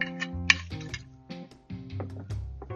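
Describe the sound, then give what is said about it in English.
Bourbon glugs from a bottle into a glass in a series of hollow, tonal gurgles that shift in pitch, with a sharp glassy clink early on. No one speaks. “All right, let's pour ourselves a nice little pour here.”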